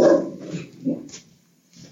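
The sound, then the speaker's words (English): A dog named Sally, recovering from stitches and waking up, lets out a few short, uneven barks mixed with whiny whimpers, separated by brief pauses, with no one talking. “Oh, Sally feels better from her stitches. She's waking up.”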